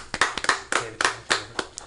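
A small round of applause: a handful of hands clapping in sharp, irregular bursts, moderately loud, with no voices over it.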